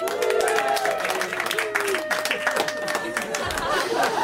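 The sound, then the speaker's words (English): Audience applause of scattered, uneven claps running steadily for several seconds, fairly thin rather than a full ovation, with some crowd murmur and a faint sustained tone underneath. The audience is applauding single people at a comedy show. “Not gonna lie to you, some of those claps sounded sad.”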